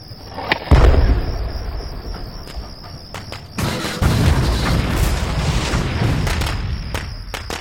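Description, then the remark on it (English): A deep explosion set off by a detonator on a munitions train booms early on and rumbles on, followed by a second, heavier blast series a few seconds later as a chain reaction, with a steady high insect-like chirring running underneath throughout. “Depressing detonator.”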